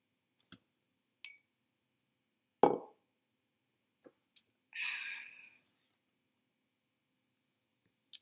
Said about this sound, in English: I'm going to take another sip of Bullet.